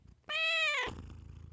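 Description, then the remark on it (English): A domestic cat purring in one short, steady, tonal burst of about half a second, fairly loud, followed by quiet room noise with no talking. “my cat Midori, who is helping me record today, says thank you as well”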